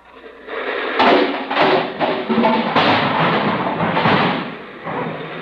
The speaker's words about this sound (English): It's raining a regular California rain. Out here, it rains the hard way. The hard way. Up. Just listen to that rain.